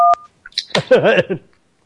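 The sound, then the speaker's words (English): A single short telephone keypad tone beeps at the start, loud, followed after a brief pause by about a second of a voice speaking. “Why are you pressing buttons?”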